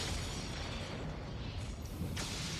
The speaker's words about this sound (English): That's a gorgeous explosion. This would all be CG now. Yeah, you wouldn't see it now. You just wouldn't see it.